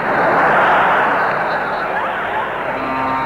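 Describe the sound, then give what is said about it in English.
A steady, loud airplane engine drone roars continuously from a plane flying 10,000 feet up, a dense rushing hum with no breaks, and a faint tonal whine creeping in near the end. “In that plane, you don't have to worry about ice on the wings.”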